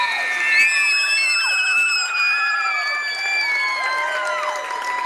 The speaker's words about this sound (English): Ear piercing cheers go up from the Amherst crowd here on the near sideline.